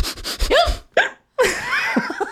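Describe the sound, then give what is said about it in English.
A voice imitates a run of sharp, squeaky hiccups of a woman with an uncontrollable hiccup condition, several quick gasping yelps in bursts with a brief pause between, fairly loud with no words spoken. “Mee, who got worldwide attention for her uncontrollable hiccup condition”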